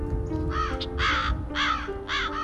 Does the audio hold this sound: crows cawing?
yes